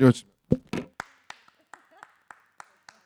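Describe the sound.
Hands clap in a steady rhythmic pattern, about a dozen sharp claps that start loud and grow lighter, with a brief bit of voice at the start. A preacher claps out a clap song used to memorize the books of the Old Testament.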